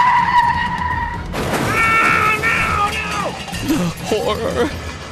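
A car's tires screech in a long, loud skid with wavering squeals, followed by rough clattering that suggests a crash into a house, all fairly loud over a steady engine rumble.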